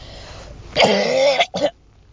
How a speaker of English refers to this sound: But whatever the stupid thing is that I have that's killing me, dude. I literally keep coughing. It's just horrible.